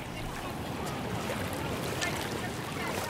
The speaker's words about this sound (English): All becomes quiet, save for the deafening roar of the Celtic Sea.